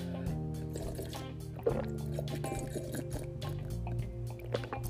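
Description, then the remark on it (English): Detox tea being poured, with soft dripping and a brief slurping sip, over a steady low tonal hum throughout. “I told y'all, I'm going to start sipping on this tea again.”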